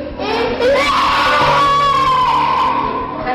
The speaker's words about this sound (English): People, you know, just screaming and writhing in convulsions.